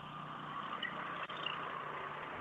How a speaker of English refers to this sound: just wait for that truck to go by.